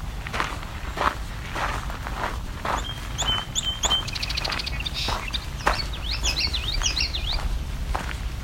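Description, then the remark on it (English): A common yellowthroat sings its rolling wichity phrases a couple of times, while steady crunching footsteps on gravel continue through the whole scene. “It's the common yellow throat, the Wichita call, or Wichity, depending on who you ask.”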